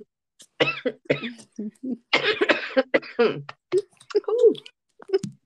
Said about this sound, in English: That cough is not real. It seems so fucking real right now, though.